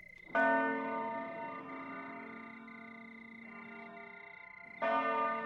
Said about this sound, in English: Then a great blue note, and the nocturnal symphony of the bells strikes up.